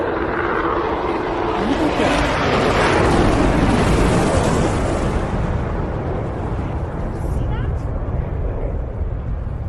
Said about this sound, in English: This is in Charleston, South Carolina. So let's go ahead and take a look. It certainly does look like an F-35, and there definitely is an explosion. Look at that.